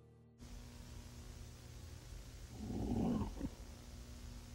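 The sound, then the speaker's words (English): Captured on an audio recorder in a room, over a steady low hiss, a single rough, low-pitched exhale swells for about a second, sounding like heavy breathing or a faint growl, then fades back into the noise. “And that's when I heard a sound that seemed like heavy breathing, or maybe even a growl.”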